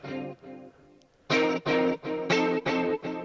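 Rich electric guitar chords, doubled with a second guitar and treated with chorus, reverb and delay, ring out with a wobbling, shimmering modulation and echoing repeats, starting softer then hitting a series of loud, sustained strums in a steady rhythm.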